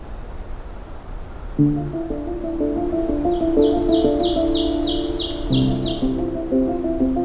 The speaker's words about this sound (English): Lots of black-throated green warblers around me.